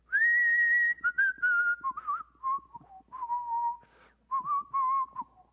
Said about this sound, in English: Back, you remember this? I'll start the whistle and you can hit the refrain with you.